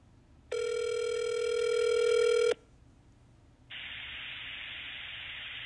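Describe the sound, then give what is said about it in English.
A phone call to a credit union ringing over a speakerphone: one steady electronic ring tone lasting about two seconds, followed by a brief quiet gap and then a flat hiss of an open phone line. “All right, I'm going to call them. I'm going to put it on a speaker.”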